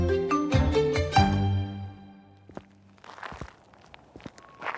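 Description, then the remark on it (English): Footsteps walk steadily along a tarmac track, a series of soft, irregular scuffs and taps in the second half, after a loud, harmonic, tonal sound that fills the opening two seconds. “So far, the walk's been along a sort of tarmac track.”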